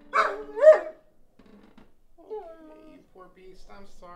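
A dog lets out two loud, drawn-out barks in quick succession, followed by quieter, fainter whining sounds that trail off over the next few seconds.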